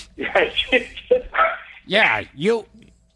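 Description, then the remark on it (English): A dog barks twice, fairly loud, with high-pitched yelping barks coming in quick succession right after a stretch of people talking. “Oh, my dog is there.”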